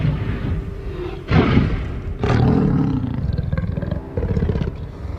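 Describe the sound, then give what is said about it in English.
A T-Rex dinosaur, roaming a San Diego neighborhood in search of water, roars: a deep rumbling growl that swells into two loud, harsh bellowing bursts before trailing off into a low, throaty rumble. No one speaks. “So the T-Rex roams the neighborhood and searches for water.”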